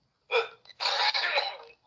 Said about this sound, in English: Bless you, I think.